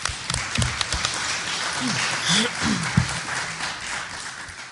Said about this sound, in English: Oh, yeah. So, round of applause. Round of applause. Yeah.